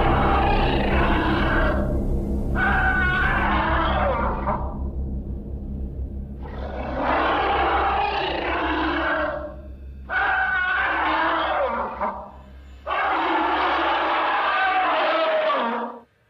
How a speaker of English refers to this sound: As one, the ancient beings cried in elation. Their wild, joyful shouts were drenched in the satisfaction of completing a sacred ritual.